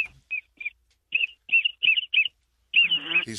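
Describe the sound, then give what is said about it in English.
A duck call whistle blown in a hunting blind to call ducks, in a quick series of short, high chirpy peeps, then a longer wavering trill, with no voices. “He's just going to call ducks right now.”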